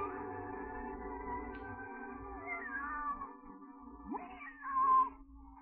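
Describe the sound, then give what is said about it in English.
A cat meows in a couple of drawn-out, wavering cries that rise and fall in pitch. The meows are close and clear over a steady low background hum, with no one talking. “Alice, you see, much preferred talking to her cat than learning about history.”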